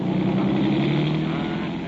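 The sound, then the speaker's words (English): A police car's engine roars loudly and steadily as it accelerates, a dense, rumbling motor sound that fades slightly toward the end, with no voices. “Look at him pick up speed.”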